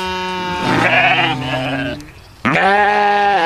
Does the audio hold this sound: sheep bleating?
yes